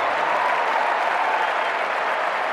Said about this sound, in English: A round of applause for my lovely assistant, ladies and gentlemen.